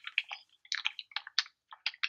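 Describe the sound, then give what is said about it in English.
Fairly quiet crinkling and clattering of paper being balled up or dice rolling over a video call, coming in quick irregular clusters separated by brief pauses, with no voices. “Mute your camera, whoever that is, rolling dice. Yeah. You know balling up paper and shit.”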